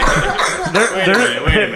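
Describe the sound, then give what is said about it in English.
A person coughs a couple of times after starting to laugh while smoking, sharp harsh bursts mixed with voiced, throaty sounds, fairly loud throughout the short moment. “Coughing.”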